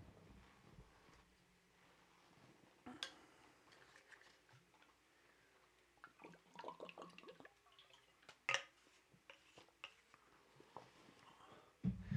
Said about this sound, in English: Oh, that's good. Especially as the weather gets hotter here for the summertime. It's good to remember to drink some water. It's good to remember to stay hydrated.